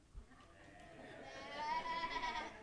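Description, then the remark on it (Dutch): Several people bleat together in imitation of a sheep, a wavering, overlapping "baa" that swells up after a quiet start and holds for about a second before trailing off. “Wat voor geluid maakt een schaap?”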